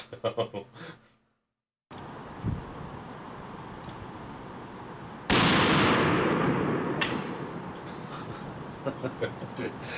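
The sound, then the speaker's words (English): A voice briefly, then a sharp gunshot-like crack over background noise; about three seconds later a loud, abrupt splat against the ground, leaving a rough, sustained wash of noise afterward. “Because you hear what sounds like a gunshot, and then like 3 seconds, and then a splat against the ground.”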